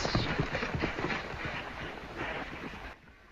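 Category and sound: animal, horse hooves clip-clopping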